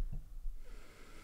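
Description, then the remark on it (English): Heavy, labored breathing through a costume mask, a quick snorting inhale followed by a raspy, muffled exhale. No one speaks. “Are you having trouble breathing in that mask?”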